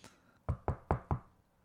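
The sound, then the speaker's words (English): Four sharp knocks on a door in quick, fairly even succession, solid, made by a person playing a Halloween trick-or-treater, with a quiet pause before and after. “Heather, do you want to knock on my door and be a child and I will demonstrate my costume?”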